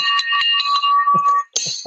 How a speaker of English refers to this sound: Bam! Where's that beautiful victory bell?